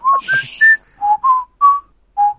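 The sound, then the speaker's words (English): A wolf whistle rendered as a quick run of about eight short, bright whistled notes that rise and dip in pitch, loud with no talking. “I thought it was a wolf whistle.”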